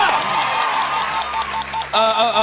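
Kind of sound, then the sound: crowd, slow clap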